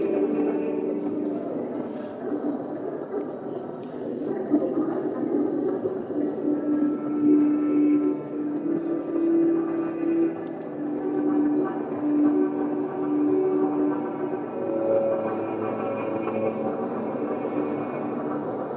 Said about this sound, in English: It's about a piece of music by Apergis called Notice of a Storm, Storm Warning. We can play it. We won't talk so much over it. Just play a minute of it quite loud.